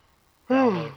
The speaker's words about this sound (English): Who's yawning?